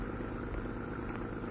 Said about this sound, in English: Look, there's a car coming around the driveway now. They're coming out fast. They're going 2 blocks ahead. They're turning to the left. Gee, look at them go. Look at them skid.